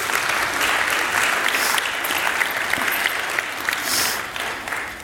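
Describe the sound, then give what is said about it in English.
An audience claps steadily and fairly loudly for about five seconds in applause for volunteers, the dense patter of many hands holding even before easing off slightly at the end. “Give our amazing volunteers a round of applause.”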